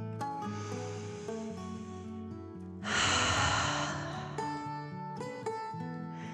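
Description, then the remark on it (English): A deep, breathy exhale of a calming deep breath in and out rushes out over gentle, sustained background music, lasting about a second and a half before the soft tones continue alone. “Then one more deep dragon breath in and out.”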